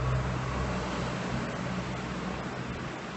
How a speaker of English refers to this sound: Yes, I am in a train station, so sorry for whatever noise.